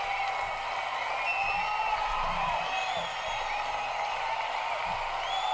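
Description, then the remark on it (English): A stadium crowd noise effect: a steady, dense roar of a large stadium crowd, with a constant wash of voices and occasional high whistles and whoops rising above it, holding at an even loudness throughout. “Let's pump in some crowd noise.”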